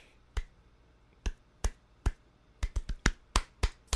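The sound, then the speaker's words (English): Morse code tapped out by hand to spell out Andrew House's house address: about eleven sharp, crisp knocks in an uneven pattern, sparse singles at first, then a quicker cluster of taps toward the end, with no voices. “It's simple, but you know, Podbean will not let me post the RSS feed if I say it out loud, but I'll do it in Morse code. Ready?”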